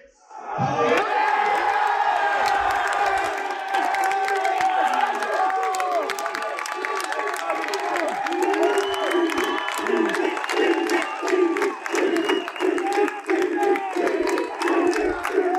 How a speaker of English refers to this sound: One of the loudest cheers of the day was when UCD's Tom Donovan was named MVP.